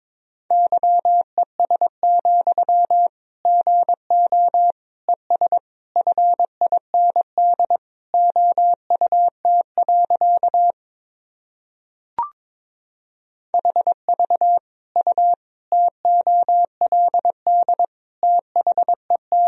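Morse code sent at about 22 words per minute: a steady mid-pitched beep keyed in quick dots and dashes, broken by one pause with a brief click, no voices.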